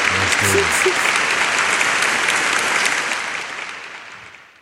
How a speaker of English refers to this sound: So we got to do something, man. We got to give ourselves a whole round of applause. Wow.